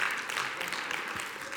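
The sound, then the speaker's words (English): Soft, scattered applause from a small crowd, a steady patter of light, polite claps running throughout at low volume with no voices on top. “Don't give God little golf claps.”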